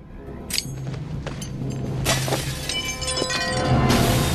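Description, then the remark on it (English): Glass shatters amid a series of sharp crashing bursts and a heavy grenade blast, with bright tinkling debris ringing out between the impacts. The sound stays loud, with no voices. “They gave a lot of credit to Sharp's hand for sound effects of the grenade and the glass.”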